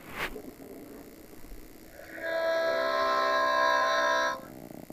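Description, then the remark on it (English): A harmonica blows one sustained, reedy chord for about two seconds, mimicking a train whistle. It sounds fairly loud, after a quiet start with a brief click. “As long as you're not playing Thomas the Train on the harmonica, then we're okay.”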